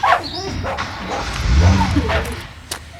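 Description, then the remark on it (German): A dog named Oskar, being petted, lets out a few short, sharp barks mixed with high, whiny whimpers and yips, fairly loud over a steady low background rumble. “streichelte Gabi ihren Hund”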